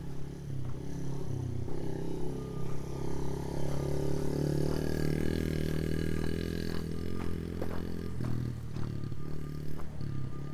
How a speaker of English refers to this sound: you can basically do laps in your yard on the little mini dirt bike.